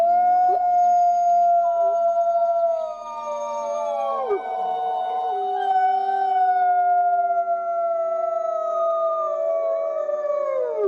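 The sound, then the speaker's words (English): A chorus of 63 wolves at a wolf sanctuary howls together, long overlapping wavering tones rising and falling in pitch, sustained and fairly loud throughout with no talking. “I mean, that's 63 wolves that are howling in unison in chorus.”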